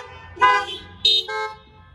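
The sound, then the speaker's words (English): Several car horns honk in quick overlapping bursts, two or three loud blasts of differing pitch, with a low engine rumble underneath, as drivers answer a question of whether they have heard of Tim Conway. “Honk your horn if you ever heard of Tim Conway.”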